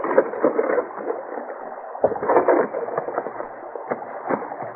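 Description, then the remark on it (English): Wooden rowboats scrape and bump up onto the shore as they are beached, amid steady sloshing water, with several sharp hollow knocks and clatters of hulls and oars. “They beached the boats and got out to face a grinning Pryor in his detail.”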